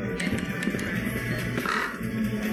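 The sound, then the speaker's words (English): A crow caws loudly and harshly inside a store, its rasping calls repeating over a dense, steady background noise, with no one speaking. “There's a bird in the store.”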